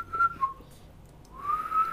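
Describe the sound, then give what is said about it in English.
A person whistles two short tonal notes, pauses briefly, then holds a longer steady whistled tone, fairly clear with no talking. “Yeah, but it doesn't matter, because this is now a podcast about learning to whistle.”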